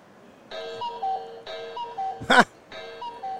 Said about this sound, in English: On top of it, the volume of the chime, you can control it with your app. All right. You can mute it. There's low, there's medium, there's high.